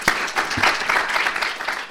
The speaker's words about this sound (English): And it is my great pleasure to have her here, and let's give a very warm applause and welcome to her